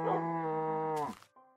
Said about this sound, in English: Hello, cow.